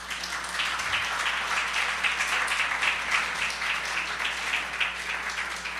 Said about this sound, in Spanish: Okay, un aplauso para ellos.